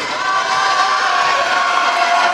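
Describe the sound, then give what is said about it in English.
A loud basketball crowd roars steadily for a couple of seconds, reacting to a foul called on a block from behind, a dense wash of cheering and shouting voices that keeps its energy throughout without any single clear voice. “Got the crowd excited.”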